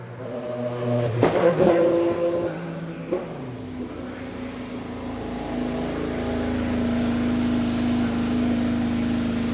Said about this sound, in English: And I thought that was just so neat to be that close to an Indy car come screaming right up to you. Thank goodness for that little 2 foot wall to keep you safe.